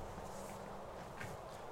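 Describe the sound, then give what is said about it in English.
Quiet footsteps shuffle steadily over a rough, gritty surface, approaching from behind the listener, a soft continuous series of steps with no voices, low in level. “At this point, you can hear footsteps behind you.”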